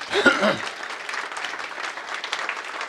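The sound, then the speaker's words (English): An audience breaks into steady, dense applause for the speaker's mother as she stands, many hands clapping together at an even, moderate loudness for a few seconds after a brief spoken voice at the start. “Everybody clap for her.”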